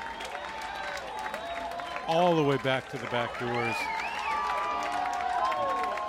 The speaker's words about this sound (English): If people aren't clapping a lot, it's because there's just no room to move your arms.